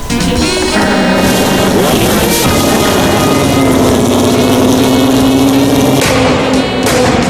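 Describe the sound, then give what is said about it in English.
A big engine roars loudly and steadily for several seconds, its deep throbbing hum rising slightly in pitch as if pulling away, with no voices over it. “Well, could you conjure up a big engine sound tearing away, like, to make us feel better?”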